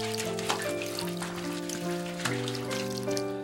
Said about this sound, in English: I'll have a pot wash. What on earth is that? It's when you give each body part its own little shower using a teapot.